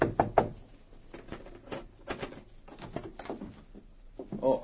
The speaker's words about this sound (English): Then he went to the Yukon Hotel, where Guthrie and Metz were registered. He knocked on the door of their room.